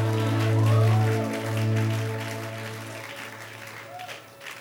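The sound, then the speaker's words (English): An audience gives a clap offering to the Lord, clapping steadily in a dense, continuous wash of applause over a sustained low musical chord, loudest at first and gradually easing off. “Lord a mighty clap offering.”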